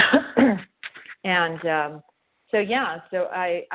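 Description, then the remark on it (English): A person clears their throat a few times, rough raspy bursts followed by short voiced hums, with brief pauses between them and no talking. “Excuse me, I'm clearing my throat.”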